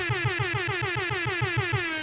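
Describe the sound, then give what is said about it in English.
A loud, brassy air horn, sounded for a raid, blares nonstop for about two seconds, pulsing in a rapid stuttering rhythm of a dozen quick repeated blasts, with no voices. “Let me get this air horn with you the raid.”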